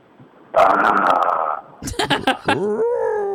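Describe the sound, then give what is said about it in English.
A person does their own growl, like a dog's: a loud, sustained rough rumble, then a run of short choppy growls that ends in a rising, whining tone. “So you start growling at her, and then she growls back.”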